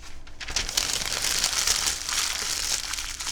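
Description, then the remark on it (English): Steady crinkling and crackling of paper being crumpled into a ball, a dense run of rustles lasting a few seconds with no one speaking. “And I'm like, well, what if you crumple up your toilet too, paper?”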